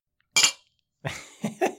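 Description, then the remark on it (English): Heavy rocks glasses of scotch clink together in a toast in a recording studio: one bright, ringing clink, then a few shorter, duller knocks a moment later. There is no talking. “We're toasting Ian through the glass.”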